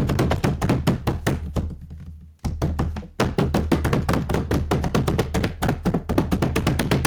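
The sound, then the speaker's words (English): A rapid drum roll tapped out on a tabletop, a dense stream of quick, even thuds that pauses briefly partway through, then resumes and continues steadily. No one speaks. “But Anyways, let's get into depth about our team of the week. Drum roll.”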